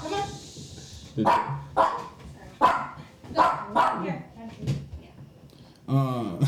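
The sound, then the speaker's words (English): A dog barks repeatedly, about six sharp, fairly loud barks at an uneven pace, followed by a brief stretch of someone talking near the end. “Dogs sometime in the video.”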